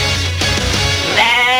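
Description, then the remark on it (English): A goat bleat sound effect, loud: one drawn-out quavering cry that wavers in pitch and rises toward the end, with nothing else heard alongside it. “And now, let's go back to Brian Hayes with the live goat tracker.”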